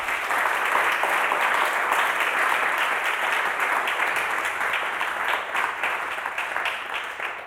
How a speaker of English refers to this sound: First and foremost, I obviously want to thank Raymond Santana for being here today. If you all can give him a round of applause.